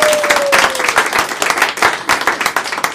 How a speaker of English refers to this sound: Big round of applause